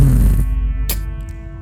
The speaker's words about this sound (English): Fuck, who farted? Why was it the bass boost sound effect?